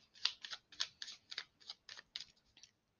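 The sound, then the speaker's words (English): A Tarot Mucha deck of tarot cards being shuffled: a quick run of crisp, papery snaps and flicks, about ten in under three seconds, fading slightly toward the end, with no one speaking. “as I shuffle the Tarot Mucha, I want to know more about the snake situation and the tower.”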